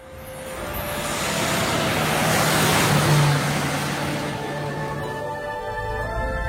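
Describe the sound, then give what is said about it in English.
A jeep engine runs steadily with a broad, rushing roar and low droning hum, swelling slightly louder midway and then easing off a little, with no voices. “Something's happened to this car. It's quieter.”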